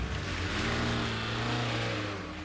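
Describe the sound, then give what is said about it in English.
A car is started and its engine roars, the pitch climbing as it speeds off, a steady loud rumble with whooshing road noise and no voices. “Then he tossed the rifle into the back seat, started up his car, and sped off.”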